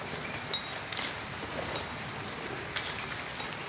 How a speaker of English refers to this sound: Damp stone and dim light as the sound of drizzle from outside echoes in the musty chamber of Finley's illicit shop of broken and stolen magical goods. The sound of the light rain enters the space through a shattered window,